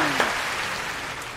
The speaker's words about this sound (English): Jack, can we get that applause again? Oh, yeah. Polite applause.